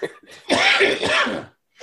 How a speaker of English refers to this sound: Edit all that out. No. And people are going to think I'm dying if you leave all that coughing in.